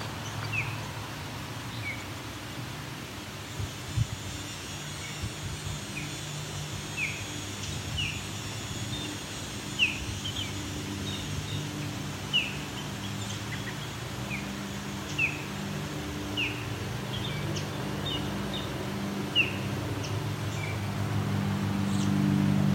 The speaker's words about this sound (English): Osprey starts vocalizing proper Osprey calls. I think he or she is done now. Nope, there we go. These are loud birds because it's probably half a kilometer from me. Let's say a third of a mile.